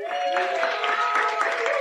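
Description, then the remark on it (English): A live show audience at the Ice House applauds steadily, a dense wash of many hands clapping with cheering voices mixed in, holding an even, fairly loud level throughout. “Give you everybody a round of applause real quick.”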